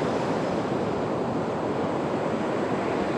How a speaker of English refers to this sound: And as you're here, you can probably notice the waves crashing in. I'm currently in Tofino, which is the west coast of Vancouver Island in British Columbia. So knowing that these waves are here to support you.